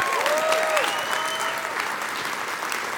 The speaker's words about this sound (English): And I applaud customer service. Let's give them a hand.